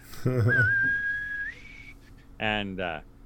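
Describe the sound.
A single sharp, high-pitched whistle holds one steady tone for about a second, then steps slightly higher, framed by short bursts of a person's voice before and after.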